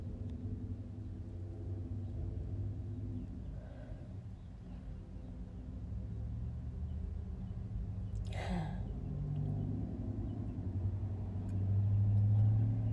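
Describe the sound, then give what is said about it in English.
Steady low road rumble from traffic outside, heard from inside a stationary car, with a brief whooshing swell near the middle as a vehicle passes and the drone building slightly toward the end. “I'm sitting in the car right now and you're hearing cars going by.”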